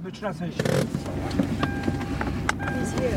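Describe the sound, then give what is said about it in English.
A car engine drones steadily at low pitch as the vehicle drives into a military base past blast walls and razor wire, with a few faint clicks and muffled voices in the background. “We drive into the base past blast walls and more razor wire, and we're told to wait in our car.”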